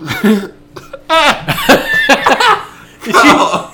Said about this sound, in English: just laughed and burped at the same time, and it came out his nose. Oh, God. That was so uncomfortable. And there's still some stuck in there.